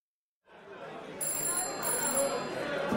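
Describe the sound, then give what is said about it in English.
A telephone rings in short, repeated high-pitched bursts in a London pub, over the steady murmur of a crowd, with indistinct chatter filling the background. “The phone rang in a London pub, and the bartender answered.”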